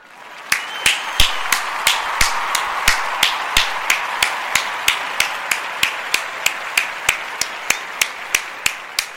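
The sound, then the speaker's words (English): A single person claps hands in a steady, even rhythm, about three sharp claps per second, continuing for roughly nine seconds with no voices, celebrating reaching 146 downloads. “Once again, give a hand clap to that.”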